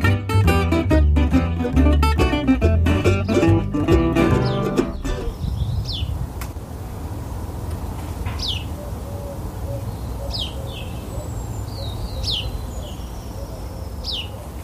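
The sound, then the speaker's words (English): A few seconds of music fade out, leaving outdoor birdsong: scattered high chirps and whistles from several birds over a soft steady ambient hum. “I thought I'd have a little backdrop of birdsong for this because so many of you have been in touch to say how much you enjoyed the birdsong in the last midweek bonus.”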